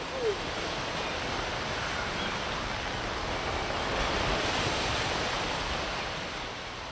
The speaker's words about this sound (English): It's time for the waves.